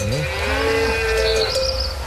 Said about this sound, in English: Any more? Any more mooing? That's it. That's all you know. Oh, and some bells.